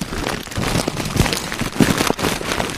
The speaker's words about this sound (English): Because I'm like, I'm pulling the wipe out of the package. Yeah, that's what it sounds like, right?